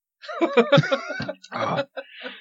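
A short fit of coughing from a tickle in the throat: a quick run of voiced, choppy bursts followed by a harsher, breathy cough and a faint trailing one.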